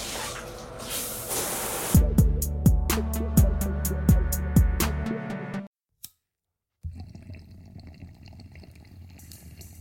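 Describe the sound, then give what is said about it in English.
A steady hiss of spraying shower water, then a run of about eight sharp rhythmic knocks over a low hum, a brief silence, and a softer watery rush with faint tones. “Now I'm gonna go take a shower.”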